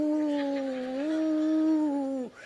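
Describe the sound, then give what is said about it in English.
A person imitates their dog Hunky Dory howling along when sung to: one long, steady, tonal howl held for about two seconds, rising slightly in pitch partway through, fairly loud before breaking off abruptly. “And I would sing to that dog, and he would, hurr.”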